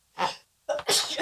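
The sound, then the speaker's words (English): A person's second sneeze bursts out loudly, preceded by a short sharp intake of breath, with a hissing, explosive release trailing off quickly. “Twice.”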